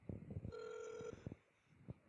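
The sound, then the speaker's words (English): A phone number being dialed: a steady electronic telephone tone holds for about half a second amid soft clicks and thumps from the handset, with no voices. “Let me try a number. I guess we'll just do this through the, you can hold your mic up to the phone.”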